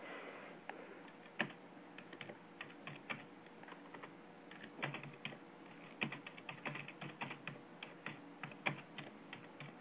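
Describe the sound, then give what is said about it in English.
Rapid, irregular clacking of keys on a computer keyboard, fairly crisp, with bursts of quick strokes and brief pauses, heard alone without any talking. “Yeah, I'm just typing here.”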